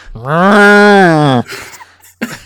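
A cow lets out one long, loud moo lasting just over a second, followed by faint background noise and a brief burst of sound near the end.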